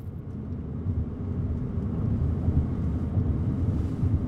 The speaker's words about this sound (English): It's now July of 2019, and I find myself back in the car, driving north through open prairie and big clouds, heading back to Gillette, for not great news.